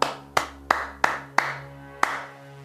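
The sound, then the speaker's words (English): Six crisp hand claps in a Clap It Back rhythm game, clapping the rhythm of the sung phrase "Penguins eating French fries": five evenly spaced in quick succession, then a short pause before a final clap, over a steady low sustained musical tone. “If the singer sings, "Penguins eating French fries," you clap.”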